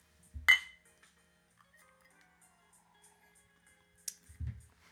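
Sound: glasses clinking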